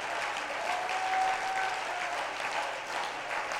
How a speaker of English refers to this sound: Somebody clap your hands to the Lord in this house.